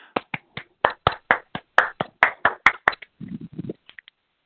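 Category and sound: crowd, round of applause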